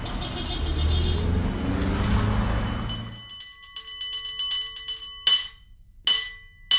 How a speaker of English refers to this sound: but there are cable car bells in the background. I think you know who is making the noise on those bells.